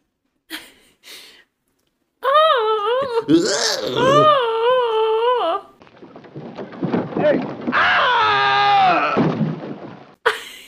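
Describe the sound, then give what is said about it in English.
A voice imitates the scream of a drunk man in a fishing boat being attacked in a film, two long, loud bursts, each a wavering, strained, high-pitched wail with a rough, breathy edge, separated by a brief lull of ragged noise. “And now, I have to ask you, how did his scream sound?”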